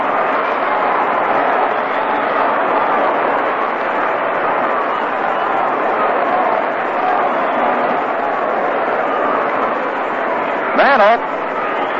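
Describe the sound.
A large baseball stadium crowd cheers and roars steadily for Mickey Mantle at bat, a loud, sustained wash of voices that barely dips, with a brief higher-pitched whistle or shout near the end.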